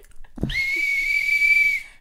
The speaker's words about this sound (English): I'm whistling because I've been taking silent deep breaths to compose myself, and you told me you needed audio. So instead, I'm just taking my deep breaths directly into the whistle.